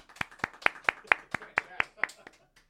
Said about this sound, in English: With that round of applause, we take a breath now.